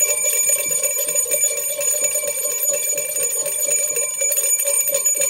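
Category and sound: signal or alarm, bell rung twice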